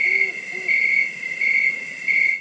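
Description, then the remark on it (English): Crickets chirp in a steady, high, rhythmic trill that swells in regular pulses, with two soft, low hoots early on, like an owl, all over a quiet night backdrop. “All I can hear are the crickets.”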